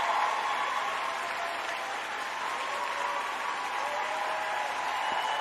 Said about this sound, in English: So, hey, real quick, Montage, we want to give everybody a real quick round of applause.